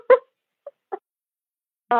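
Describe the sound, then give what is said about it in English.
A female puppy playing with her toys makes three short, scattered grunting yips, then a reedy, flute-like whine starts at the very end. No one talks over the noises. “That's so a noisy puppy right there.”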